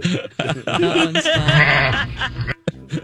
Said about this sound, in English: A screaming goat.